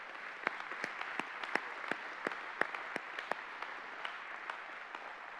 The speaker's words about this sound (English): Would you give the Lord a hand clap?